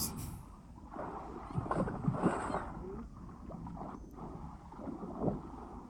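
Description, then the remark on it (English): A motorboat engine drones steadily, mixed with rushing water and wind buffeting the microphone, the rumble growing louder in a few spots. “Wait, didn't he just say start slowing down? And the engine got louder.”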